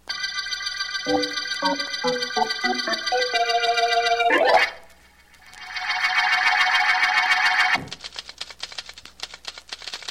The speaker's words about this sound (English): Can't you stop that typing for a minute, Ann?